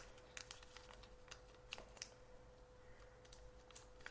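A rotary encoder clicking as it turns, a quick run of small, crisp detent clicks at an uneven pace, fairly quiet over a faint steady electrical hum.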